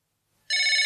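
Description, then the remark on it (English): After a moment of silence, a Tile Bluetooth tracker on a set of keys, triggered by asking Siri to find the keys, abruptly starts ringing with a loud, bright, steady multi-tone chime that stays continuous until the end. “And that's what the tile sounds like.”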